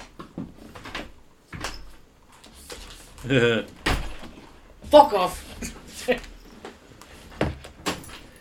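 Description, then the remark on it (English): A door is pushed and knocked repeatedly in short, uneven thuds and rattles as someone struggles to get it shut; a person talks and shouts in between. “For anyone curious, the door is refusing to close.”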